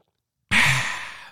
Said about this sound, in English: Just one moment, please, while I sip a delicious sip of coffee.